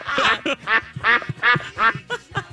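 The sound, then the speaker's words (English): A duck quacks repeatedly in a rapid, uneven series of loud, nasal calls, prominent, with no talking over it. “We would be raising ducks”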